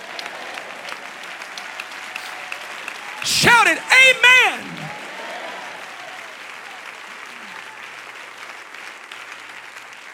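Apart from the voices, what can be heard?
audience clapping hands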